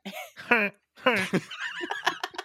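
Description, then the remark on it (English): Several voices take turns doing goose honk impressions, loud nasal honking bursts, with a quick run of shorter squawky honks toward the end. “Goose is. Noise. Go. Everyone. Best goose noise.”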